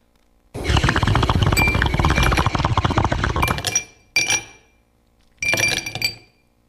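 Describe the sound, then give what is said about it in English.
Glasses clink together in a toast: a long run of bright, ringing chimes lasting a few seconds, then two shorter clinks after brief pauses. Fairly loud, with no talking. “Cheers.”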